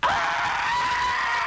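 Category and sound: human body sound, person screaming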